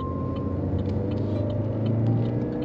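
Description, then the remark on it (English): Steady low-frequency rumble of a car engine and road noise from inside a moving vehicle, continuous and fairly loud with a faint tonal whine, no voices present. “Y'all know I'm in my car. I'm driving.”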